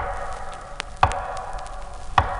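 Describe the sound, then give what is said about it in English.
Two sharp, evenly spaced knocks, about a second apart, with a fainter tap before them, standing out over a steady low hum. No one speaks. “Then came the same measured knocks I had heard before.”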